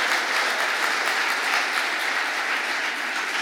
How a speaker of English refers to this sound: Now put your hands together and give God a hand clap of praise.